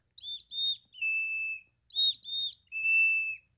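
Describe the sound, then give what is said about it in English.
A person blows a high bird call to summon birds to the feeder when putting food out. It repeats twice: two short rising notes followed by one long, steady held tone, clear and fairly loud with no talking. “But I go outside and I call my birds to come to the feeder when I put food out.”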